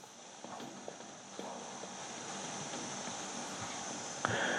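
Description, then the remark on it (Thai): Horse hooves clip-clop at a steady, unhurried walking pace, the hoofbeats moderately quiet over a constant background hiss, ending with one sharper, louder knock. “ต้องออกไปให้นายชนะขี่ม้าไปพระองค์ก็นี่ก็ขี่ม้าตัวเดียวกันนั่นแหละม้ากันตกะ”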